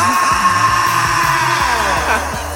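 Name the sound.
air horn sound effect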